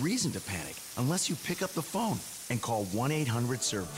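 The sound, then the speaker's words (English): A steady, hissing rush of water gushing from a pipe burst inside a wall and pouring through a living room ceiling runs beneath a man speaking in the foreground. The spray-like wash stays constant throughout, partly masked by the voice. “But when it's the sound of water gushing through your living room ceiling because a pipe burst inside the wall,”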